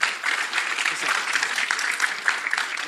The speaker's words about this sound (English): I don't know if they're clapping for Nikki Haley or they're clapping for the gentleman that asked the question.